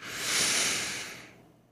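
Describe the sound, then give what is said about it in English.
A slow, deep inhalation through the nose during morning meditation, a soft airy hiss that swells and then tapers off over about a second and a half, with no talking. “Breathing in.”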